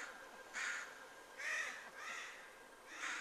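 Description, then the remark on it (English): Crows caw four times in a steady, unhurried rhythm, harsh, with short pauses between each call against a quiet outdoor background. “Again, here come the crows.”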